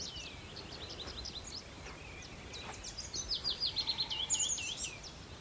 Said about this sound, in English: Yeah, there's tree pipits. I'm just trying to work out what the other... They're getting blended in with the willow warblers. Yeah, it's tree pipits. It's hard to pick them out, but they're kind of more rapid. Sort of, I think they're a lovely song